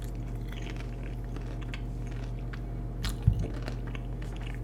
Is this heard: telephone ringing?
no